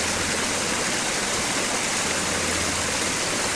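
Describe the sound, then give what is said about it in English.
Water pours steadily over a memorial fountain in the Moore Center's meditation garden with reflecting pool, flowing over quotes from Harry T. Moore and Martin Luther King Jr.; a continuous rush with a bright splashing hiss that holds evenly throughout, with no voices. “Most recently, the Moore Center unveiled a meditation garden, reflecting pool, and gazebo. Water flows over quotes from Harry T. Moore and Martin Luther King Jr.”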